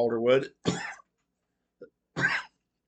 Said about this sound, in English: as I go into a coughing fit.